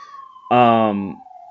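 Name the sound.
ambulance siren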